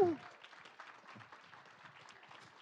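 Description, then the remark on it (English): A crowd claps steadily for people who are getting baptized next week, a dense patter of many hands with a few voices mixed in, fairly soft throughout after a brief louder voice at the very start. “So these guys are getting baptized next week. You can give them a hand.”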